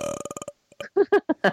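A loud, rattling burp sounds up close, rumbling in quick pulses for about half a second, then a voice starts talking right after it.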